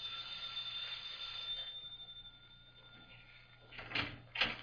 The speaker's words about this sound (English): First, I rang the bell.